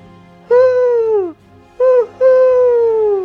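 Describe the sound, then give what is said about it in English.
A voice imitates an owl with three loud, hollow hoots: a long call sliding down in pitch, a short clipped one, then another long, drawn-out hoot over a low background hum. It is a hag calling out like an owl at the edge of the Uskwood druid's territory. “Invisible, she laid the bundled babe on top of a fallen tree, then called out like an owl.”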